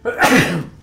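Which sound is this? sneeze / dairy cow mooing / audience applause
sneeze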